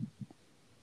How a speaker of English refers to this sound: I just burped. 88, hopefully that didn't come through. It's all coming through clear. I feel like this is picking up every time I move, it picks it up. I did that little wag light burp and I was like, well, that's probably going to come through.